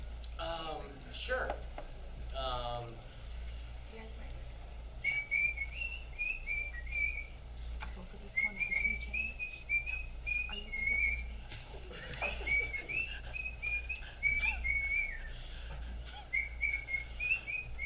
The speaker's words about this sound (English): And I think we got to ask you, sir, would you whistle us a, would you be willing to whistle